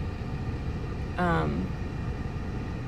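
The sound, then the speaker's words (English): Steady low road rumble of traffic fills the whole stretch, with a brief tonal whine rising out of it about midway before fading back into the constant drone. “Give me just a minute because I have traffic I have to watch and I have to turn my head the opposite way.”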